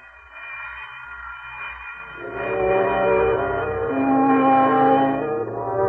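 A closing bell in a public library rings continuously with a harsh, buzzing metallic tone, getting louder about two seconds in and sustaining steadily to the end. No voices are heard.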